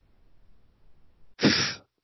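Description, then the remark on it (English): After a near-silent stretch, a voice lets out a single loud, breathy "pfft," saying the title of a 1954 movie, Pfft: a sharp puff of air through the lips that lasts under half a second and then cuts off. “Number one was a movie from 1954 called Pfft.”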